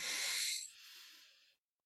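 A single long, airy deep breath drawn in through the nostrils during a meditation, loud at first, then thinning into a softer hiss before stopping. No one speaks.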